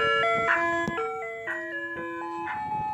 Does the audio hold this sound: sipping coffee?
no